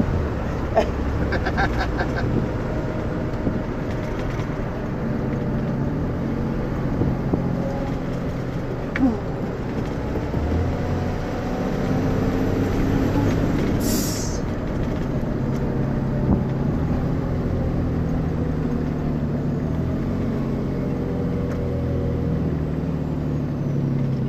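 A car engine fitted with a K&N air filter and a throaty aftermarket exhaust rumbles loudly and steadily, its pitch shifting slightly as the revs rise and fall, with faint voices now and then.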